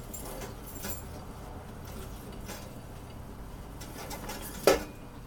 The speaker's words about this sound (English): Okay, now if I was to turn off the kettle, I'm going to flip the switch down. Now the kettle is actually off, but the heat of the kettle can still pop some popcorn. And it's still stirring because the stirrer is still on.